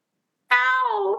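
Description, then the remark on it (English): A single strained, strangled-sounding cat meow starts abruptly after a half-second of silence, holding a tight harmonic tone that sags in pitch over about 0.7 seconds, fairly loud. “That was a very strangled sounding cat noise.”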